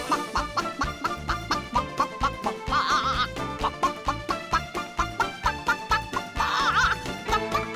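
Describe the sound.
A voice clucks like a chicken, imitating the way Clara Cluck sings, in time with an upbeat song, with two loud wavering bursts of clucking over the steady rhythmic music and no speech.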